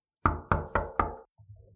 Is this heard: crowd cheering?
no